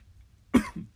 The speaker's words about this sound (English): I'm sorry. Give me a second. I don't think I've ever coughed that hard on the podcast.